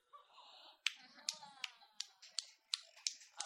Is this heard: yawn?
no